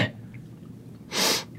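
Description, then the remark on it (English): A single sharp sneeze caused by dust bursts out, a loud, breathy blast of noise lasting a fraction of a second after a short quiet pause. “Ooh, it's dusty. Yeah. I sneezed.”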